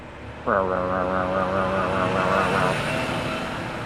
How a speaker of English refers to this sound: And I realized, oh my God, it was just a garbage truck in the alley next door that happened to be coming down the alley way too fast right before that.